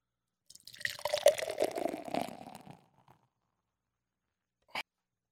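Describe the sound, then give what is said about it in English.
Bottle Logic Hanamachi Rice Lager, from a can, glugs and splashes into a glass for about two seconds, a bubbly pour with fizzing, followed by a short pause and a single sharp clink or tap. “Let's get this pour going.”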